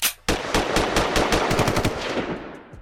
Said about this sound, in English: Why are you laughing? You know, as family, hearing the gunshots.